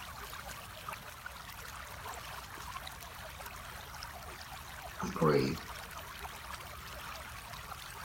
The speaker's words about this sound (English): The rhythm of the water.